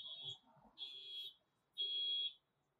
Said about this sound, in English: Now there's like a freaking car alarm going off. Yeah. I hope it's not my car. It is your car. It is. Oh my God.